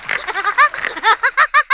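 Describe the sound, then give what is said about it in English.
A Woody Woodpecker cartoon laugh: a high, nasal, warbling cackle of rapid repeated syllables, loud and alone, ending in a string of evenly spaced bouncing pulses. “Is that a new laugh? What the hell? That's a new laugh. Is that Woody Woodpecker?”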